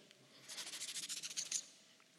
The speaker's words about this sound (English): I love hearing the Bible's pages turn, right? And your phones flip.